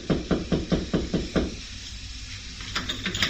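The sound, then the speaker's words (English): Six quick, evenly spaced solid knocks on a door, followed by a brief lull with faint hiss and a few softer taps near the end. “The door opened before I could get to it.”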